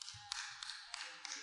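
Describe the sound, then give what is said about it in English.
Four sharp, evenly spaced hand claps by one person during a Bible reading about praising the Lord, about a third of a second apart, crisp but fairly quiet over a low background hum, with no talking. “I don't know who clapped.”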